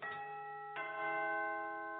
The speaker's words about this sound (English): When the doorbell rings.